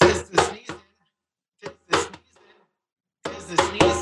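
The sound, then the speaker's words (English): Sharp, punchy drum beats land in short clusters at the start and end, accompanying a voice that speaks a brief phrase twice, with a quiet gap in between. “With the drum.”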